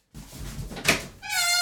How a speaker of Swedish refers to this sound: Och nu så ringer det på dörren. Jag vet vem det är.